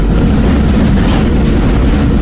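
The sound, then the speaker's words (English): A train rumbles past on the rails, a loud, continuous low-heavy roar with rattling metallic texture, steady throughout, with no voices. “Okay, next on the list. Oh my God, trains.”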